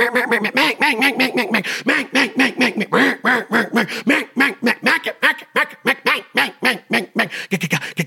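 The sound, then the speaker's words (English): A rapid, continuous run of loud, close duck quacks, dozens in quick rhythmic succession with slight variations in pitch, produced by a person imitating a hen duck with their voice. “And if you're practicing like that and you don't have a call, but you're keeping your stomach tight and you're staying relaxed and you're getting all those different ducks by doing that, think about what you're doing.”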